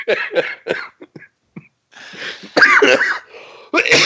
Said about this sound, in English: You deserve that coughing fit.